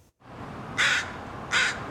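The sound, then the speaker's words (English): Two loud, harsh caws from nesting crows in West Vancouver ring out about three-quarters of a second apart over a steady background of outdoor noise, with no voices. “Nesting crows in West Vancouver are in full attack mode these days.”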